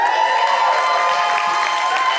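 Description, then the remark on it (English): A large crowd shouts and cheers for Jesus continuously, a dense, loud roar of many voices sustained throughout with no pauses or single clear speaker. “Come on, give Jesus a better shout than that.”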